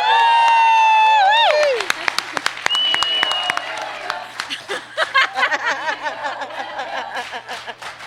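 A crowd cheers loudly as a guest is welcomed, with high sustained whoops and shouts over a burst of clapping, then the cheering settles into scattered excited voices and laughter as applause continues.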